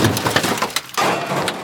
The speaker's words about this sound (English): With neither Logic Lad or Do Nothing Man even laying a finger on it, the body of the Boeing 737 MAX jet collapses in on itself.